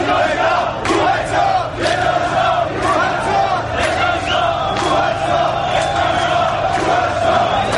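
A large crowd chants protest slogans in unison, a loud, dense roar of voices with rhythmic shouted bursts repeating throughout, occasional sharper cries rising above the mass.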